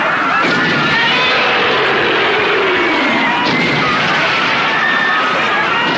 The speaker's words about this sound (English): And when we say juggernaut, there's no exaggeration. Just listen to how loud the crowds were at just one of their concerts back then.